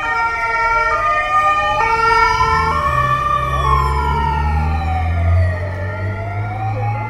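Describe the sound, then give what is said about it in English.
Several emergency vehicle sirens from a police bike, police vehicles and an ambulance wail at once in the street, a two-tone siren alternating alongside a rising and falling wail, loud over rumbling engine noise, with no talking. “Got a police bike, another police vehicle, an ambulance.”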